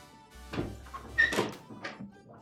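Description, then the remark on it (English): A door is opened to let the Billy, the studio's puppy mascot, into the studio: a low thump and rattle as the latch gives, followed by a couple of knocking, creaky bumps as it swings, fairly loud. “And open the door for the Billy.”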